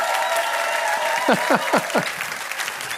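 A crowd at a church service applauds steadily throughout to honor a longtime member of the church, a dense even patter of clapping, with four quick falling whistle-like whoops rising above it in a row midway.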